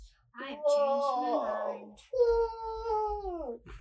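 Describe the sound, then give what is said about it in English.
A child's voice imitates a humpback whale call with two long, wavering, moaning tones that glide and bend in pitch, the second slightly steadier and fading out. “The humpback whale sounds like this.”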